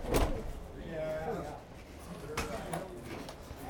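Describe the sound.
A building door is opened on the way to climb a ladder to the roof, with a sharp clunk at the start, then a few scattered knocks and rattles follow. Faint voices and background bustle sit underneath.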